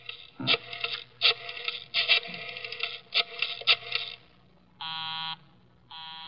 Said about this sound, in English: Busy? He's probably left the phone off the hook, Inspector.